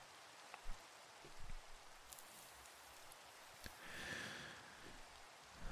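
Steady rain falls in a constant hiss, with scattered drops pattering and tapping irregularly over it. No voices, just a soft, even wash of rainfall with occasional sharper drips.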